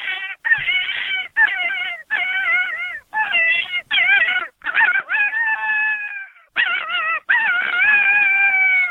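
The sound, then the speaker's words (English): A person imitating a coyote with their voice as a predator-hunting call: a run of quavering yips and short wavering cries, then drawn-out howls, loud, with no talking. “So we'll do rabbit distress, and we'll cut it off with a howl.”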